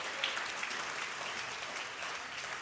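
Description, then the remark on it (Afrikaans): Sustained applause from a church audience welcoming the online audience of a church service, a steady wash of many hands clapping at once, fairly loud and even throughout with no voices standing out. “Kerkfamilie, kan ek vra met jou, heel, ons heel beste hande klap, kom ons verwelkom ons online gehoor.”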